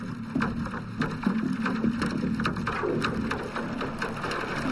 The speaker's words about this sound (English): The first thing I hear is the engine of a huge barge, which is moving from O'Connell Bridge up the Liffey. And underwater you can hear the gears and the engine grinding.